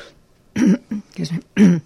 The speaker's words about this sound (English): Excuse me. You are excused. Yeah, I excuse you. You want to cough? You can cough.